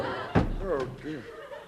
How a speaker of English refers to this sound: Now, I'll put the sideboard up against the door so we won't be disturbed.